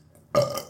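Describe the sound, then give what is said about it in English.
A single loud burp erupts abruptly after a brief quiet moment, rasping and sustained for under half a second before trailing off. “That was me. That was … Burp.”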